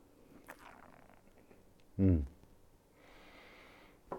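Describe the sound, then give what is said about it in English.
A sip of matcha tea being tasted: a brief, loud slurp followed by a longer, airy drawing-in of breath, with faint mouth sounds around it. “When we go into the matcha of Mr. Nakai, now I'll have a sip of it.”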